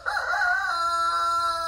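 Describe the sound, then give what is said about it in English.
A rooster crows once, a loud, drawn-out cock-a-doodle-doo with a bright harmonic call that holds steady and then trails off, with no talking over it. “Even with those roosters.”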